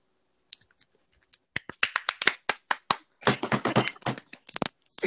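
hand clapping

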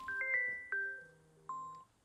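mobile phone ringtone

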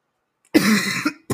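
coughing

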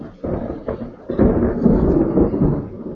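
thunder

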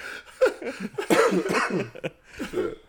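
coughing

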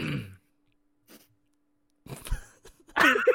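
throat clearing

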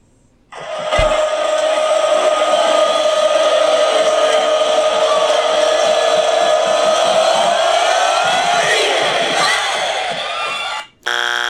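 buzzer sound effect

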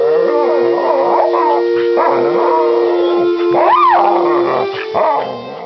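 dog howling

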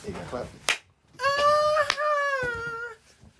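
hand clap

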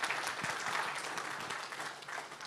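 audience clapping

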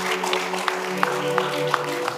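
audience clapping

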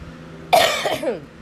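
coughing

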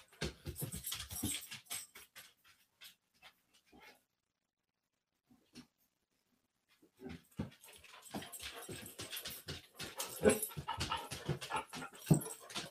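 dog panting and whimpering

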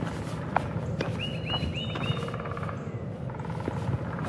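woodpecker drumming

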